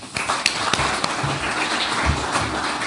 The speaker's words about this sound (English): I'm really hopeful you give him a very warm round of applause.